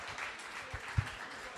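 An audience gives a round of applause: a steady, dense wash of many hands clapping, fairly soft throughout, with a couple of dull low thumps partway through and no voices.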